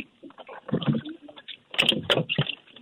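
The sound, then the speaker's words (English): A boat hatch being opened on a calm morning with a light south to southeast wind of about 5 to 10: muffled thumps and scraping rattles, then two sharp metallic clicks from the latches, with softer knocking afterward. “So I'm gonna open the boat.”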